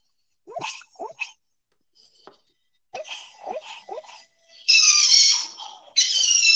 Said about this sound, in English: That's a dog. This is Try Not to Laugh. And this dog looks like Doc, my dog.